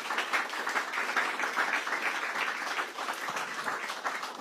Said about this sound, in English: He deserves a round of applause, really.